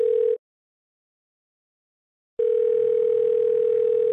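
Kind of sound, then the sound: signal or alarm, phone call ringing tone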